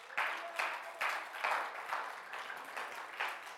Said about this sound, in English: Give these guys a hand clap.